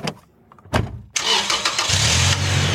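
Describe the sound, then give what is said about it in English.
The engine of the Muskrat, a car with a freshly tuned engine and a lift kit, cranks with a few short bursts, then roars to life and settles into a steady, low idling rumble, loud with no voices. “Hop in the driver's seat, turn the engine over, and make sure she's in park beforehand. Turn engine over? It means start the engine.”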